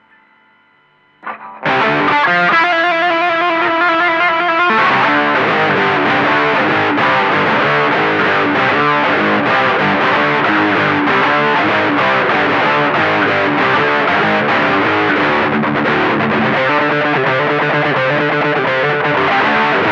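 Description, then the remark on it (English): A heavily distorted electric guitar riff, played live through an effect, kicks in after a brief quiet start, loud and sustained, with a gritty, effect-laden tone and a driving rhythm that thickens after a few seconds. “But I got this nice effect.”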